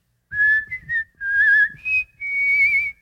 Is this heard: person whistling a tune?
yes